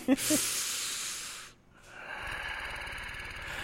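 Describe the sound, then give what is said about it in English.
A person makes a breathy hiss, pauses, then imitates a purr with a low, fluttering rattle that carries on steadily, with no other talking. “I'm going to bleep out a section of that little purr.”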